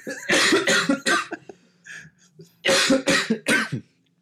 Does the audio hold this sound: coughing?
yes